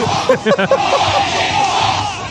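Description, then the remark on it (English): A large crowd at a Trump rally roars and cheers loudly, a dense wash of voices with a few shouted bursts standing out near the start before settling into a steady, sustained din. “What a crowd!”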